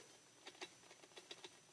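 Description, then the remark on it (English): A big, fat squirrel, body contorted and reaching, clicks the lever of a supposedly squirrel-proof feeder over and over to make the food fall out. The clicks come as a quick, uneven series of small, sharp mechanical clicks, about nine in under two seconds, fairly faint with no voices. “And I looked up, and there was a big, fat squirrel, and his body was contorted, and he was reaching, and he was clicking this little lever over and over and over again, and it sounded like this.”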